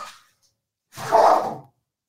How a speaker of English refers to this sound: Sorry about the interruption. My dogs decided to fight over their food.